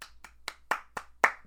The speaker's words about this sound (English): I think first we have to give a round of applause to Oscar Isaac. Let's just for a second.